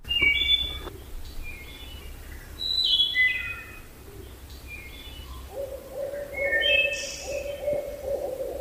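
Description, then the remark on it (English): A barred owl calls from far off in Savage River State Forest, Western Maryland, at about 6:15, its hooting rising into a drawn-out wavering note near the end, while smaller songbirds, including ovenbirds and wood thrushes, chirp and trill throughout. “The barred owl calling off in the distance here in Savage River State Forest in Western Maryland.”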